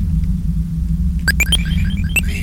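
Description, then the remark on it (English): A steady, dense low rumble from a Braids synthesizer oscillator module set to its CLOU (clouds) mode drones throughout. In the second half, bright, quick chirping tones and short electronic bleeps join above it. No one speaks. “Rumbly sound there down low is one of my braids.”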